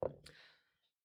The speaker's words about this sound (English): Well, you know what? Let's let the dice decide.